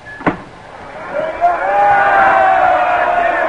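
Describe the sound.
The whole student body, with people from South Bend, cheers and yells in the morning at a train's back platform to welcome the team, the roar swelling up after a sharp knock and holding steady as a loud, sustained mass of voices.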